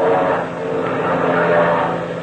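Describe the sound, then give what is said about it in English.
A steady, droning propeller engine of Captain Midnight's plane hums continuously in flight as it looks for a place to land, with a low, even roar and no voices over it. “That looks like a place a plane could land. What? Oh, yes. Yes, Patsy, it does. I'll turn over that way.”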